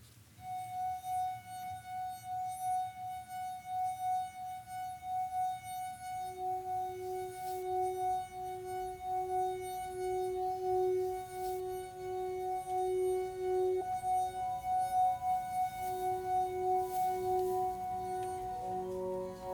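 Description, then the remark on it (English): Wine glasses taken from a kitchen cupboard and played by rubbing as a glass harmonica give a sustained, pure ringing drone: one steady high tone joined by a lower tone, forming a chord that swells and wavers with a soft friction hiss. “So then I went upstairs, opened the kitchen cupboard and pulled out some wine glasses and made a glass harmonica.”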